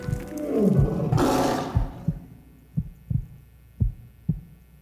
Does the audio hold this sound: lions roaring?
yes